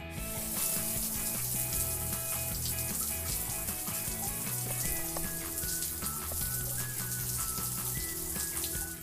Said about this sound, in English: A running shower.